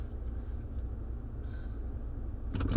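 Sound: car driving on road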